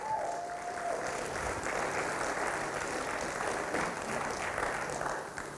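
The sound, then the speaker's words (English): Sustained applause from a large audience giving a man a round of applause, a dense wash of clapping at steady volume for several seconds with no speech over it, tapering slightly at the end. “Come on, let's give him a good round of applause.”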